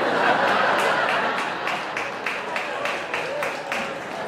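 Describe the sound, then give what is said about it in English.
A single audience member at a comedy show claps enthusiastically in a steady run of sharp, rhythmic claps. The claps are quick and evenly spaced for several seconds over a dense bed of crowd murmur and light laughter. “Very enthusiastic fat clap over there, by the way.”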